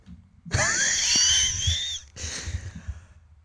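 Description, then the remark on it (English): A high, piercing scream from one person rises abruptly, holds for about a second and a half, then breaks into a second, somewhat quieter strained squeal, loud with no talking. “I'm going to do my little scream at this, on the side.”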